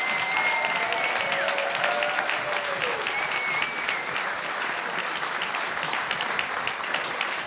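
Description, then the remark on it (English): An audience claps in a sustained, dense round of applause welcoming the junior and young Burnsonian award winners to the stage, staying loud and steady throughout, with a few faint cheers or whistles rising briefly over the clapping near the start. “Give them a massive round of applause.”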